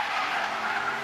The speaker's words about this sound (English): Yo, that's a brand new car and you got the hood spray painted? This guy's pissed. We're doing a photo shoot. We're supposed to do a photo shoot, not out here burning up the goddamn tires.